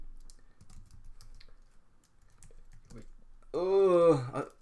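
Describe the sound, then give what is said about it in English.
Light, irregular tapping of fingers on a computer keyboard for several seconds, fairly quiet, before a voice briefly cuts in at the end. “I'm typing on the.”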